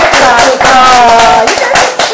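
A few people clap for a show's female co-host in sharp, uneven bursts while voices whoop and talk loudly over the applause.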